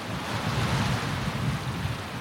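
Steady wash of lake waves against a pier, a continuous low rumbling surge with a breezy hiss over it, moderately loud, with no one speaking.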